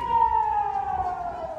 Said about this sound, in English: The foreign secretary was hustled into a shelter when the sirens went.